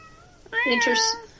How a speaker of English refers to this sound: Oh, speaking of, you just said that and she meowed. You can fuck anything you want, kitty.